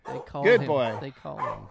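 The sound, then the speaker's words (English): A small dog named Mahler barks in two quick, high-pitched bursts, yappy and fairly loud, with a short pause between them. “Little dog, you know it's Mahler.”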